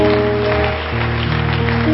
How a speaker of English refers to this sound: Praise the Lord, everybody. Won't you give the Lord a hand clap of praise?